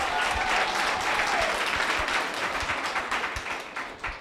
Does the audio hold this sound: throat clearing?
no